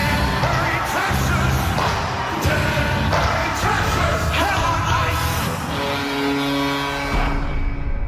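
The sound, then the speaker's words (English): A hockey arena crowd cheers wildly as the team bursts into the rink, a loud, unbroken roar full of yells and whoops, punctuated by sharp bangs, with a steady tonal drone rising through the last couple of seconds. “The crowd goes fucking nuts.”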